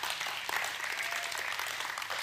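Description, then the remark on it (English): An audience claps for God together in a steady, dense wash of applause that holds at an even level for a couple of seconds without any speech. “Let's give God a big clap for that.”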